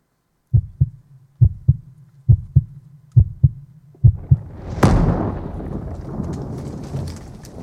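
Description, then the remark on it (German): A deep, muffled heartbeat pounds in steady double thumps about five times, then a sudden loud burst breaks in and trails off into a rumbling, crackling wash of noise. “Und das passiert, und das Herz explodiert, sieht es folgendermaßen aus.”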